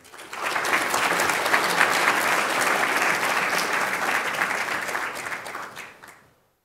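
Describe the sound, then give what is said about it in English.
A crowd applauds steadily for several seconds, welcoming a speaker to the Distinctive Voices podium, a dense wash of many hands clapping at an even loudness before fading out quickly at the end. “I wish my students would applaud when I came in the room.”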